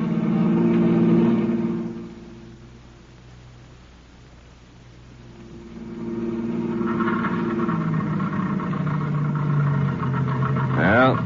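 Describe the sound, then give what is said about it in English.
A car engine hums steadily, then falters and dies down to near silence before catching and surging back, sputtering as if running out of gas. “The end of the gas.”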